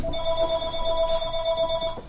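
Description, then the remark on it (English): A telephone rings for a toll-free call with a steady electronic trilling tone, bright and fairly loud, holding for about two seconds before cutting off. No one speaks over it. “I only get calls on that phone.”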